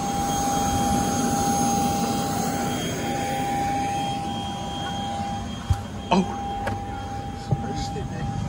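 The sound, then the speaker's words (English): A small private jet's engines hum steadily, heard from on board, a constant roar with a thin high whine running through it, broken near the end by a few brief clicks or knocks. “I've never been on a jet this small.”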